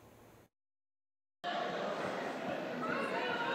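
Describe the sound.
An audience boos Chris Christie for his opposition to Donald Trump in a loud, sustained, dense roar of many voices that fills the last two seconds, following a short burst of crowd noise and a sudden stretch of silence.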